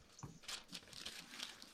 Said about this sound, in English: So I got this. Let me pull out a little paper here.